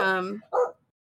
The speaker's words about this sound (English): She won't listen. It's okay. I'm just used to barking all the time.